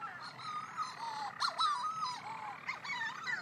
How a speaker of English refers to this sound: Guess these birds are circling far and wide above us and around us, and off out to sea and back, and I think they're calling and trying to tune in to the response of their mate, which is the shearwaters nest in burrows, much more significant burrows